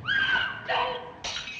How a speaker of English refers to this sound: And then there's a scream. Exactly. Mm-hmm. And there's a scream and broken glass.